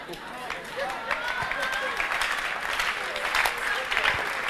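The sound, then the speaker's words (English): A church audience claps during a sermon in a steady, dense wash of applause, many hands overlapping into a continuous crackle with a few sharper slaps, while voices murmur and call out underneath. “No, you are not clapping for Jesus.”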